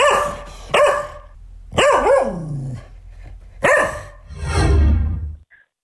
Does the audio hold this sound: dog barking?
yes